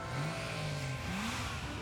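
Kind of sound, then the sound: vehicle, car engine revving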